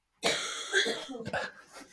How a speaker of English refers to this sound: Right, so we've actually had a cough.